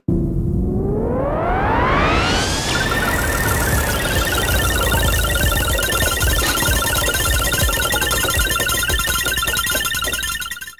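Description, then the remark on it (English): A randomizer sound effect: a whining tone sweeps upward over the first few seconds, then holds as a loud, steady mechanical whir layered with warbling electronic tones until it cuts off. No one speaks. “Well, what do you say we fire up the randomizer and see what we can get?”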